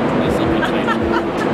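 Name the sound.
bus passing by outside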